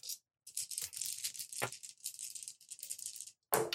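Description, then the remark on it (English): Dice, including a fortune die, clatter and rattle continuously during a game, a dense run of bright, clicking hard-plastic impacts with a few sharper knocks, pausing briefly before a final loud burst of rattling. “I will use a fortune die.”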